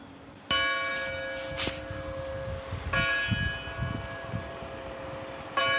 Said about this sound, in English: And then in the town center, it's just really quiet. The most exciting thing that happened when I was there, the church bells rang.